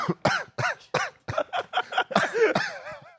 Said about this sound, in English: Coughs right into the mic as the show ends. Well, I didn't want to cough towards you as I'm shaking your hand.